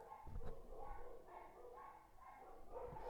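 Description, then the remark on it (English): Dogs bark repeatedly outside a house, a run of overlapping, somewhat muffled woofs and yelps coming steadily for several seconds, fairly faint. “No, those dogs weren't at the battle. They're outside my house.”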